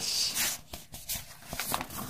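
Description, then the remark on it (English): Paper crinkles and rustles as fingers handle it, with a steady crisp rustling broken by a few sharper crackles over a couple of seconds, no voices. “this is paper. It's another physical object that you will become familiar with in time.”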